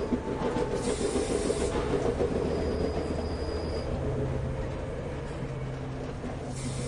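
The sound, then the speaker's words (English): A steam locomotive hisses steadily, a broad rushing noise with a low rumble beneath, a faint whistle-like tone drifting in midway. No voices. “Steam locomotives. Childhood trains that puffed and shrieked and jabbered.”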